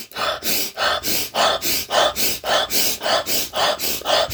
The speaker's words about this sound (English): And the last, that is a very, very easy thing to do no matter where you are, whether you want to move, you don't want to move. Breathing. Guys, hyperventilation breathing.